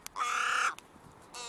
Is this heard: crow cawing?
yes